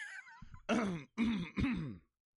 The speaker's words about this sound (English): that cough was inconvenient for you, the listener. I apologize.